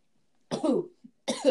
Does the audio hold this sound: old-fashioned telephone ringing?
no